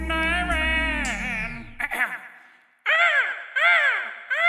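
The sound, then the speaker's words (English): A flock of seagulls calling: a long, falling cry followed by a quick series of loud, harsh squawks repeating, with no one speaking. “Or a flock of seagulls.”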